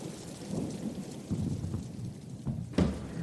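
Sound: heavy rain falling outside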